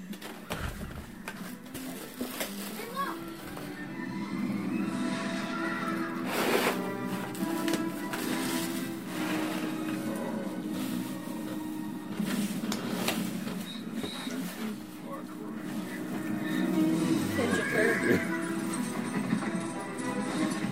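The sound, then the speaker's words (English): Horse hooves clip-clop in a steady rhythm against a busy, noisy backdrop, with a horse whinnying near the end; the sound stays fairly loud and continuous throughout. “Horses that he's worried about.”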